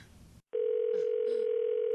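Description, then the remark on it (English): A brief rustle, then a short pause gives way to a steady, continuous ringback tone heard through a phone line as an outgoing call back to a man rings, a single unbroken buzzing hum, fairly loud. “We'll call him back, and you just act like you have no idea what's up, okay?”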